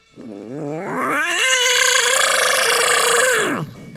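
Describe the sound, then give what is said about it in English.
A person voices a loud, nasal, duck-like roar for a made-up dinosaur, the Donald Duckosaurus, wavering at first and then holding a strained, raspy squawk for about three seconds before dropping off. No talking accompanies it. “But he had a roar that was kind of obscure, and it was like.”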